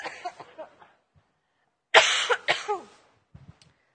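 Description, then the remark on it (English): A person coughs: a few softer, raspy coughs at first, then after a pause a loud fit of harsh, rapid coughs that trails off into quiet. “Sorry. I can't laugh. I cough.”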